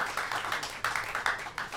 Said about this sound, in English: give him a big clap as we kick him out of the podcast